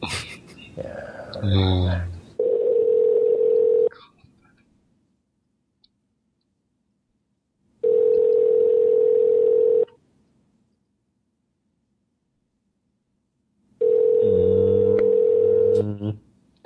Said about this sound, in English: I like part of the show where the phones ring. Ooh. One ringy dingy, two ringy dingies, three ringy dingies. I think that was four.